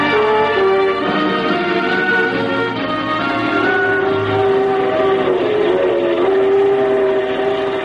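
A passenger train runs steadily along the rails, a loud continuous rumble threaded with sustained whining tones, unbroken from start to finish with no voices.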